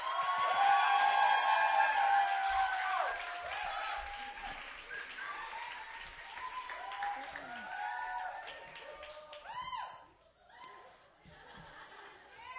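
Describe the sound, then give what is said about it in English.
An audience claps and cheers loudly for the evening's speaker, a co-lead pastor of New Philadelphia Church, at Emmaus, with scattered whoops and laughter rising over the steady applause, which gradually thins out toward the end. “So let's give a round of applause to”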